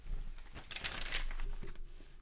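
A paper D&D character sheet being handled, with a cluster of crisp crinkling rustles in the middle and softer shuffling before and after. No voices, just the dry rustle of paper.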